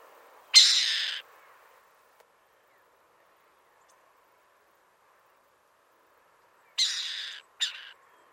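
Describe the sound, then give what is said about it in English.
A burrowing owl in Bolivia gives harsh, hissing rasp calls: one long burst, a long quiet gap, then two more rasps close together near the end, clear against faint background noise. “Next is a burrowing owl in Bolivia. This one is making the rasp call, which is used when a burrowing owl is distressed or when begging for food.”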